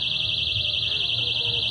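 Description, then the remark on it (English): A shrill, high-pitched alarm tied to balloons sounds continuously and loudly in a room, with a slight warbling wobble throughout, while muffled voices murmur underneath; about eight people carry balloons with beepers and alarms in them. “Also, the alarms are tied to the balloons.”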